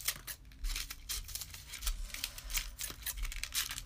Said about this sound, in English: Now I want you to fold it up into as many parts as you need to, but I want it to be really skinny. Now I want you to take a pair of scissors and cut it into pieces.